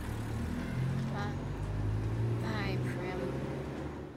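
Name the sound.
bus engine driving away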